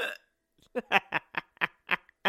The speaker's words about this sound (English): I have the hiccups.